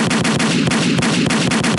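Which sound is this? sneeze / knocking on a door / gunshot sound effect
gunshot sound effect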